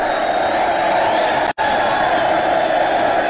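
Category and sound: crowd, crowd cheering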